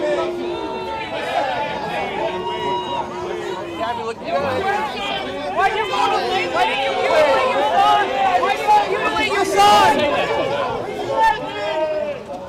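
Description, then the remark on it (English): A crowd booing former NBA star Dwayne Wade loudly and steadily, many voices overlapping into a continuous jeering roar that swells and stays dense for the whole stretch, with scattered shouts rising above it. “There's tons of booing over this guy.”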